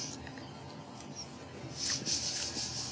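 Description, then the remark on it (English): Wet chewing of a forkful of a cold onion mix, with irregular crackly, crunchy bites that grow a bit louder and sharper toward the end; no talking, just steady mouth noises. “That's some chewing, by the way, folks.”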